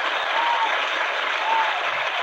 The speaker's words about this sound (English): Come on now. I think we need to get the applause on that one.